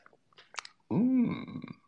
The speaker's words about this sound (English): I like coffee. And join me now for the unparalleled pleasure, the dopamine hit of the day, the thing that makes everything better, including the damn pandemic. It's called the simultaneous sip. Happens right now. Go.